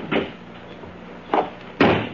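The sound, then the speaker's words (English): A car door is shut with a solid thump, preceded by a couple of shorter knocks and clunks, fairly loud with no talking. “Then stand aside while I release the brake and close the door.”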